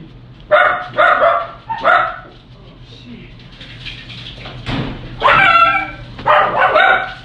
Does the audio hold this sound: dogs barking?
yes